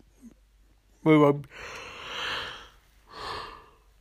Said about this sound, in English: In between fucking yawns, I guess I could say this